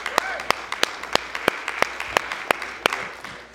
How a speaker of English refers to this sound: Come on and give him a hand clap today, please.